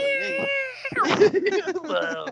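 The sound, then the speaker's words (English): A person imitates a cat's yowl: a drawn-out, whiny tone that wavers and bends in pitch, then breaks into choppier, warbling cries for about two seconds. “Imitate the noise. I'll do it myself.”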